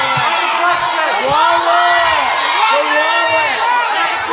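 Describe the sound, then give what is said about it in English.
A loud live audience yells "wallet" as a warning, whooping all at once, many overlapping voices rising and falling in urgent shouts for several seconds, dense with no single voice standing out. “You guys were scaring the shit out of me. I honestly thought you were yelling walrus.”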